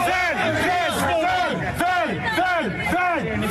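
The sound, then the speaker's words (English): A large crowd boos a man yelling about going into the Capitol, shouting in repeated rising-and-falling waves of voices, loud, with a dense babble of many people underneath throughout. “this is a guy yelling about going into the Capitol, and people are booing him, saying, no, don't be ridiculous.”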